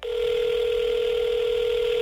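A telephone tone hums steadily for about two seconds as a call is placed to a search dog group, a single unbroken mid-pitched note that stays loud and even before cutting off abruptly. No one speaks.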